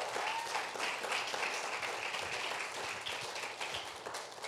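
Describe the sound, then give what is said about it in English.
An audience applauds as a couple is invited up to the stage: a dense wash of many hands clapping at once for several seconds, fairly loud and sustained without any talking over it. “Give them an applause.”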